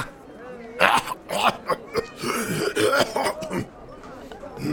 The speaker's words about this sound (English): Have you thought about doing anything about that cough you have? What am I going to do about it? It'll go away in a couple days. It's not like it's the first time I've been sick.